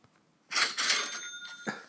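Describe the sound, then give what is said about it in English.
A cash register rings out with a bright, jangling metallic ding after a brief silence, its high bell tone lingering over clattery noise, with another short clank just before it ends. “A quiet little cash register.”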